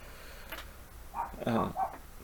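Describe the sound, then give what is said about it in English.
A dog barks a few times in quick succession, three short muffled yips over a faint background hiss with no one talking. “As the dog agrees with Stardom being the number one to talk about”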